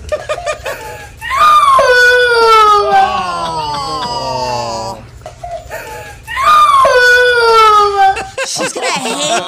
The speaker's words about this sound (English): Here's the little girl crying about the elf on a shelf that the dog ate.